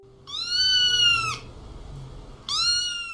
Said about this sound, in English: First, let's go over the sounds. For el gato, which is the cat, we'll hear this sound.